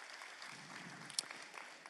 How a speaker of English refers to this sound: Y'all are awesome. Come on, give yourself a round of applause because you're awesome.